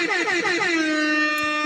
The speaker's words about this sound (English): Let me get my hip-hop air horn out. I put it away too prematurely.